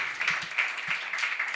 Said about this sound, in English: In fact, I think everyone read for the first time, unless I'm mistaken, which is great. Let's give them all a round of applause for reading for the first time.